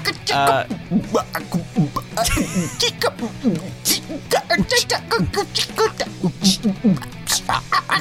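A voice imitates a chicken, clucking in a quick, rhythmic string of fairly loud bursts that runs throughout with no other sounds around it.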